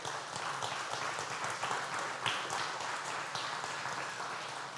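An audience breaks into sustained applause, a dense, steady wash of many hands clapping at even loudness for several seconds, with no voices standing out.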